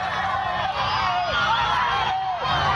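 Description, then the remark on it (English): A large crowd of migrants roars continuously while attempting to storm the border at El Paso at night, many voices yelling, whooping and shouting over one another in a loud, frenzied din with no pauses. “Massive group of migrants attempts to storm the El Paso border last night.”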